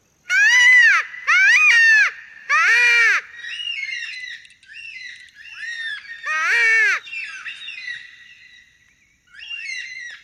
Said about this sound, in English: So we do a karak, which is that red tail or that cockatoo.